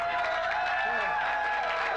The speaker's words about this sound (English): Oh, we're getting boos and claps.